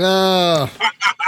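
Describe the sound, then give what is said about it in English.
A loud bird gives one long nasal honk, then three quick harsh squawks in rapid succession, like an agitated goose. “Super scared of these birds.”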